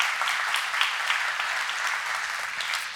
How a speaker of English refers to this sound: If you're a guest, though, we really want to give you a special welcome. And so for those who are part of this church, can you give a good clap to our guests that are with us?